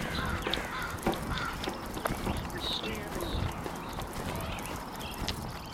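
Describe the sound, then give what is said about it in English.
A crow squawks a few times with harsh caws at a raccoon running down the side of the road at 4:42 a.m., over a busy outdoor background of steady rustling noise and faint knocking sounds, the calls moderately loud. “Like that crow was squawking at a raccoon that was running down the side of the road and ducked into a culvert.”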